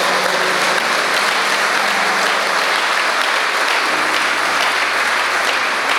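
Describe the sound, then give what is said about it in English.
An audience bursts into sustained applause for the Lord during a sermon on the Bible, a dense, steady wash of clapping from many hands that stays loud and even for several seconds with no voices on top. “Give the Lord a big round of applause at that point.”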